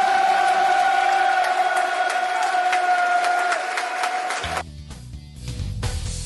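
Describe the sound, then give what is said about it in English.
A large football crowd at Bramall Lane roars and applauds the Milton players after their win, a dense, steady wash of noise with a sustained high tone running through it, then the sound shifts abruptly into something lower and more broken. “Milton players come down to take the applause. Listen to that.”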